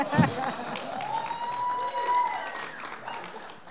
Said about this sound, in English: Every morning when I wake up and look at her and she looks exactly like she does now, don't let anyone tell you any different, I think this woman deserves a hand clap.